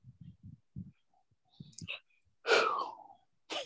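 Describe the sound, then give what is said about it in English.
A single loud sneeze bursts out after a few soft murmurs and breathy sounds, followed by a brief sharp breath. “God bless you, brother.”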